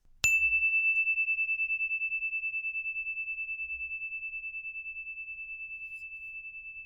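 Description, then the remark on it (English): A single meditation bell struck once, its clear pure tone ringing out and slowly fading over several seconds with a gentle pulsing shimmer, heard alone in quiet surroundings. “One more in, one more out, and here comes the bell.”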